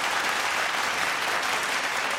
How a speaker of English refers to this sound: Applause.